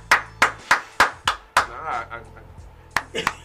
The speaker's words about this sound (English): So, give a clap to the winos.